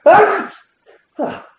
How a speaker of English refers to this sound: Oh my god. Look at the level on that. I think that's the first time I've sneezed on the show.